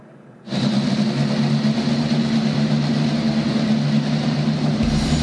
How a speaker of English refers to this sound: Here to give the command to start engines, your Grand Marshal for the Indy Next by Firestone Grand Prix of Portland, from the Oregonian,